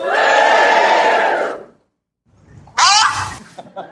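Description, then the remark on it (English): A live crowd cheers and shouts loudly for about a second and a half, then cuts to silence. A second burst follows with a rising whoop and scattered calls that fade out. “where I'm here with all the crowd of this country.”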